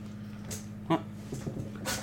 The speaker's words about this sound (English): Oh, we got a dog in the house. Blaze making his second appearance on the podcast. Come here, Blaze.